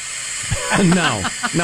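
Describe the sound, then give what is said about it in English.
A voice mimics a hair dryer with a steady, breathy hiss, broken by a short humming, wavering vocal tone partway through before the airy rush resumes. “My hair's a mess, so I turn on my hair dryer.”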